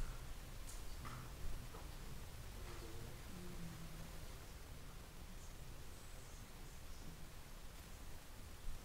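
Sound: white noise hiss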